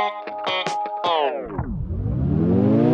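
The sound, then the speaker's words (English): The intro of a brand new song played on the Ranch Local Spotlight radio segment opens with choppy, stuttering bursts of bright, buzzy chords, then a heavily processed tone slides steeply down in pitch as a hissing wash swells upward. No singing yet. “But without further ado, let's take a listen at that brand new song.”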